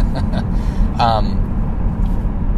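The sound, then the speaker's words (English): Steady, loud low rumble of a car driving through heavy morning commute traffic, with a brief tonal squeal or voice-like sound rising above the road noise partway through. “And so, sorry folks, there's a lot of traffic. I'm a little distracted here this morning.”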